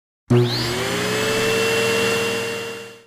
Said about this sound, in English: Some people have a robot that vacuums their house.